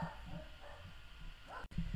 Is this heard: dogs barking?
yes